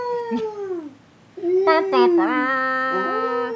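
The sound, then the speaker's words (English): A voice imitates orca whale calls with two long, whining, high-pitched cries. The first slides downward and fades, and after a short pause the second wavers upward and holds steady. “Those are my really bad whale sounds.”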